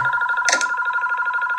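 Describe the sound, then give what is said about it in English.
A home landline telephone rings with a steady electronic trill, two sustained tones warbling rapidly in a fast pulsing rhythm, loud and continuous, briefly overlapped by a sharp clatter. “Okay, that is called a home phone.”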